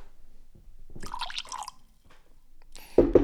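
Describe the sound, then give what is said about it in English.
Whiskey splashes into a glass in a short gurgling pour, with a few quiet drips, then a louder burst of liquid sound right at the end. No one speaks. “But yeah, give me one last splash of this whiskey so I can remind myself what's going on, and then we will figure things out.”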